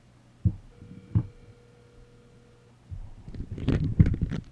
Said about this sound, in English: Sorry, everybody, I'm moving a phone. I put the phone in a bowl. That's what all the noise was.